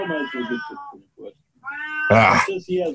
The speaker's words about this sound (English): Meow.